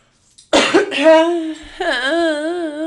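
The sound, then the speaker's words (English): A harsh throat clearing from phlegm after eating ice cream bursts out once, then trails into a drawn-out voiced sound whose pitch wavers, like a groan or hum, without any words. “But, I just ate ice cream, and now I'm phlegmy, and I apologize greatly for when I clear my throat.”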